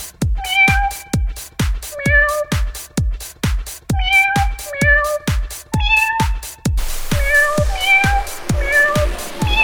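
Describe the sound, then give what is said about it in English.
Cat meows played as piano notes on the Cat Piano app form a bouncy melody over a steady thumping beat, each sampled meow pitched differently in quick rhythmic succession, loud with no talking. “let the cats begin”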